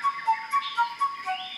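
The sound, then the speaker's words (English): A bird call of clear, whistle-like notes repeating in a quick, even rhythm, joined near the end by a higher sustained tone. Moderately loud, with no talking. “Here's a beautiful bird from the first episode.”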